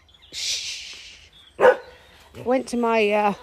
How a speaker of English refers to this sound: Sorry, cat's just appeared and the dogs have got excited.